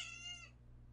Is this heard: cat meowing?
yes